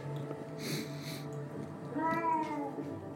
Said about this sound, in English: That is a persistent cat.